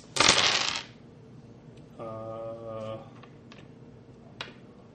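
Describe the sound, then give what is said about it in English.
A quick clatter of dice tumbling across a hard tabletop at the start during a tabletop game, the roll coming up 3s, then a brief sustained hum-like tone and a couple of faint clicks. “He rolled like shit. So he got 3s.”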